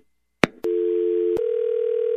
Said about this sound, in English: I'm hanging up this phone right now.